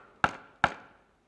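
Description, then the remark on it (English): Two firm knocks on a wooden door, evenly spaced less than half a second apart, each with a hollow resonant thud that rings out briefly before fading into silence. “Maybe he's inviting you to hear the knock.”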